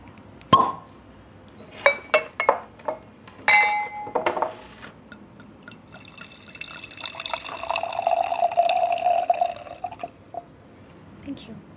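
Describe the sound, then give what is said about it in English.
Glassy clinks and clatter as a 2016 bottle of wine is opened on a balcony, then a steady liquid pour with a rising gurgle as wine fills a glass, ending in a few soft knocks. “Should we open it?”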